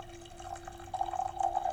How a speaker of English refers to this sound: And I'm getting my coffee poured as we speak.